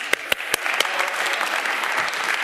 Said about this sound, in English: All right, give everybody a round of applause.